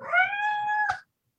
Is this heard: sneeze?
no